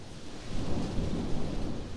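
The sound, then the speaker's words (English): Heavy rain pours steadily while deep thunder rumbles underneath, a continuous, dense roar with no voices, fairly loud throughout, as people run into a barn to escape the rain. “the Duke and Viola run into a barn to escape the rain”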